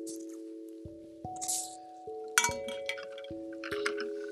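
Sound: person drinking water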